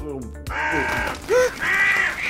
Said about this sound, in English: The birds! The birds! The birds! The birds! Open the doors! Open the doors! Oh, those accursed birds!